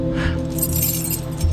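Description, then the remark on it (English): A set of car keys, the keys to a Stingray, jingles and clinks in a continuous shake for a moment, bright, over a steady low droning background. “The keys to the stingray.”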